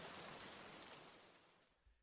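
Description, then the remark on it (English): A steady, dense hiss of rain falling on a grave and its headstone, fairly soft and even, gradually fading away over a couple of seconds with no voices present. “But the rain keeps coming down.”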